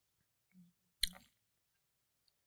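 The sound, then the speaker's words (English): A single quick, wet sip of a drink being tasted for a review, a short slurping burst that fades within a fraction of a second, preceded by a faint low murmur and otherwise quiet. “Here's my just a sip.”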